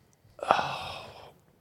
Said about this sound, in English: come in with some heavy breathing during those ad reads.